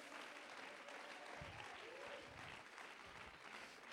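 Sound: audience clapping hands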